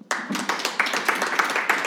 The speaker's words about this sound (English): And so friends by general acclaim, Mitch Landrieu, please clap.